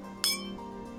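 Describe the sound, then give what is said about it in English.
A single bright clink of glasses touching in a toast, sharp, ringing briefly before fading under a low steady hum. “Cheers to the new you.”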